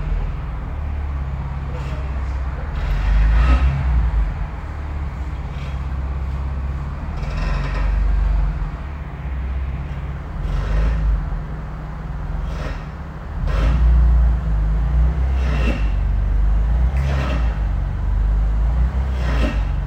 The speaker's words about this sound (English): I hope the sound of that car being worked on isn't too distracting for you, if you're able to keep that intention to be fully present right now.